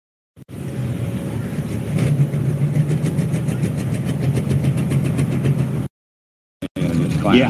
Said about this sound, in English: Diesel tractor.